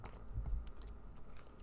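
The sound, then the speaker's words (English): A quiet sip of water: soft, wet mouth noises and a low gulp partway through, with faint clicks afterward and no talking. “I'm gonna drink some water because I can tell my voice is going.”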